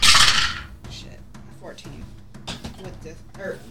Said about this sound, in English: Try the other dice that have been rolling shitty.